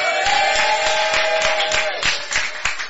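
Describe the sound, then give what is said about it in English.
A crowd claps and shouts together as a clap offering and shout of glory, in a dense, continuous burst of loud applause, with scattered sharper claps and raised voices over the roar. “So with a shout of glory, if I don't hear a shout of glory and a clap offering, I don't let them talk till tomorrow morning.”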